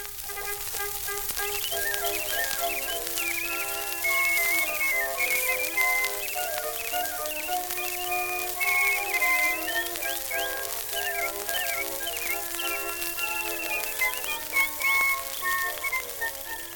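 An early orchestral phonograph recording with a whistler trilling and chirping birdlike melodies over sustained orchestral lines, all under a steady layer of hiss and crackle, with no talking.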